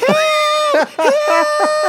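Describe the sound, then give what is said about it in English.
A voice imitates shrill, high-pitched children's screams in two long, wavering wails separated by a brief break, loud, with no other sounds around it. “It's actually their screams trying to get out of his house, you know?”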